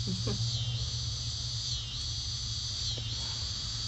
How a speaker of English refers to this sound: Give it up to all the cicadas across the nation.